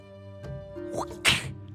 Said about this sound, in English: Hear the crack of the whip again as you now see an Amnizu mercilessly whipping a corner to the mirror.